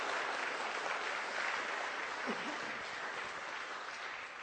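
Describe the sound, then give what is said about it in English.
An audience claps steadily, a dense, sustained wash of applause that holds at an even level throughout, with a faint voice briefly audible underneath, applauding a speaker as he leaves. “Why don't you give him a round of applause as he goes?”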